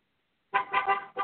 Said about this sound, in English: Hello? Beeping their horns?